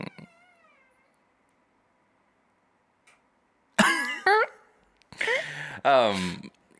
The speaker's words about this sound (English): Sorry, I'm sitting in the rocking chair in the nursery, and it just makes the most awkward creaking and squeaking. No, that sounds like a horror movie sound. Like, oh, what was that?